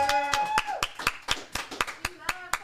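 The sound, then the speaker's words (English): Steady, rhythmic clapping for a co-host at a 100,000-subscriber celebration, about a dozen sharp claps evenly paced, with a voice calling out and whooping underneath. “A round of applause”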